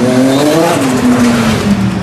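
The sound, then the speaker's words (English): A turbocharged V6 race car engine with one big turbo roars loudly and steadily as the car accelerates hard down a street closed off as a course, its harmonic tone rising, with a faint hint of tire noise and no voices. “A nice V6 in there with a turbo. One big turbo.”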